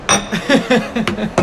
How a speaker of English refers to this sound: I apologize. No, it was coffee. I mean, it was the last sip of my coffee. Okay, and like, fine. You know, I didn't purposely clink it, but...